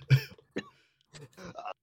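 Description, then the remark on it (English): A person coughs several times, with three or four harsh, rough bursts separated by short pauses and no talking in between. “I can't stop coughing either.”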